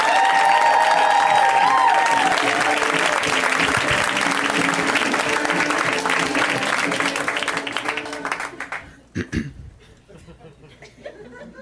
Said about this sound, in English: And when it is somebody's first time, we welcome them so enthusiastically with a Hallmark Christmas level of applause.